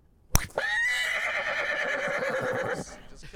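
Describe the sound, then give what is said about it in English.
A sharp click, then a long, loud horse whinny on a golf course, with a wavering, quavering tone that sustains for over two seconds before cutting off, clear. “Well, I don't know why there was a horse on the course.”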